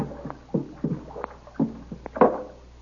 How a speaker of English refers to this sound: Well, here we are. Stop paddling, Kolo. I'll bring us up alongside now.